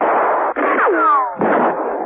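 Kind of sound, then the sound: sound effect, gunfire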